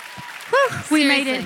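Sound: audience applause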